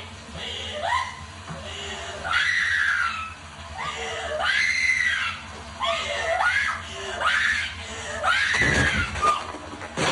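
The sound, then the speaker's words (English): A woman lets out a series of shrill, piercing screams, one after another in rising and falling wails, loud with no talking, filling the whole stretch. “And they're yelling out to him, and she's just giving these series of blood-curdling screams.”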